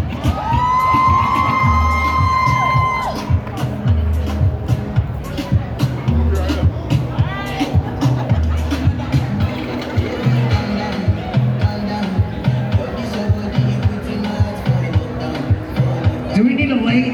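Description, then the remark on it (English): A loud crowd of ladies cheers and shouts, making as much noise as possible before performers come out on stage, a dense roar of overlapping voices with sharp whoops and yells poking through, including a high, sustained cry in the first few seconds. “the stage, making as much noise as possible. The more noise you make, the sexier and nastier we get. Ladies, are you ready?”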